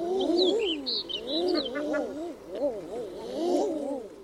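Common eiders give a steady series of low, crooning coos that rise and fall and overlap one another, with faint higher chirps mixed in above, moderately loud.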